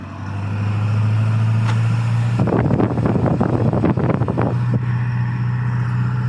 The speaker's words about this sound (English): You want to hear how loud this car can get? Listen.